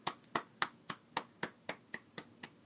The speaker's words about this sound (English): Oh, the slow clap. Oh, no. I hate clapping.